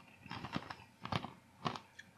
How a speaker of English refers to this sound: Drum roll. Wow. And crunch. Oh, they are crunchy. Mm-hmm. Pretty dry. Pretty dry.